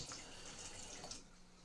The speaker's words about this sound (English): Imagine that, listeners. I've got actual running water in my house.